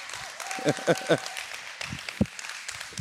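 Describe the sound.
An audience claps steadily throughout, a dense wash of many hands with a few sharper individual claps standing out, and some voices murmuring underneath.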